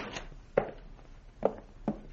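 A door opens and shuts, heard as three sharp wooden clunks at uneven intervals, fairly loud against a faint steady hiss, with no voices.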